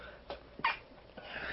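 A quick, stifled sneeze: a small breathy puff followed by a sharper hissing burst, fairly soft, with no talking around it.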